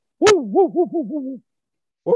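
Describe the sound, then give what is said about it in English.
A voice imitates a dog barking: one loud, sharp opening bark, then a quick wavering run of about four shorter, softer barks that fade away, with a new sound just starting at the end. “It's a long bark followed by a series of descending barks that get shorter and shorter and shorter.”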